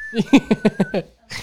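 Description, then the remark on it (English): A voice imitates the four-note whistled signal tune from The Hunger Games with a quick run of sung syllables, fairly loud, followed by a short breathy exhale. “I can't whistle, but I just imagine, like, people walking into Circle K doing, like, the Hunger Games thing.”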